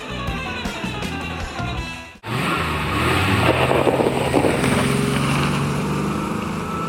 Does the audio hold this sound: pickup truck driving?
yes